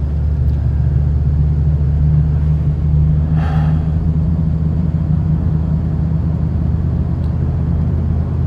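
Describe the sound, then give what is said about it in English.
A steady low rumble of morning road traffic fills the background, with one vehicle swelling briefly louder as it passes midway through; no one speaks. “And there is a little bit of traffic this morning.”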